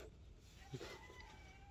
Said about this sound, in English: Speaking of nature, all the dogs started going and barking, and the goats and the chickens, and still got a rooster going in the background. I don't know if y'all can hear it.